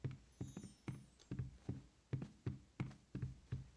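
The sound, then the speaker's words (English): A steady run of footsteps, about nine evenly spaced thudding steps at a brisk walking pace, each with a dull low impact and a light scuffing click, with no voices. “They just hear footsteps.”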